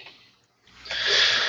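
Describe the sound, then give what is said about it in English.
A short, soft sniff followed by a longer, louder, hissing inhale drawn up through the nose, with no talking; a man sniffing a small vial of something. “As you walk into the room, you see him sniffing a small vial of something.”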